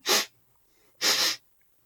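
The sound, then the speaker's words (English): A voice imitates a dragon snorting twice, two short, loud, breathy nasal bursts with a brief pause between them, with no talking. “And it lets out a couple sparks from its nostrils as it snorts.”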